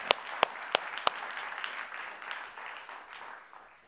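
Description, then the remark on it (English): A round of applause given to God and to his glory: several sharp, distinct claps at the start swell into a dense, steady patter of clapping that gradually softens toward the end. No voices are heard. “So let's give a round of applause to God and to his glory.”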